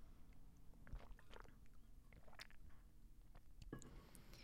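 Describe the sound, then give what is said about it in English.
Quiet mouth sounds of a small sip from a drink: a few soft wet clicks and slurping noises scattered over a few seconds, with no talking. “Let's take a little sip.”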